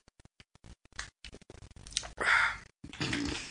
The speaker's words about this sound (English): Yeah, let me take a sip of this Schweppes real quick and swig. All right, a little swiggy swig.